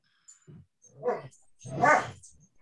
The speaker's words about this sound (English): Oh! My dog really wants to get in here. Did you hear that?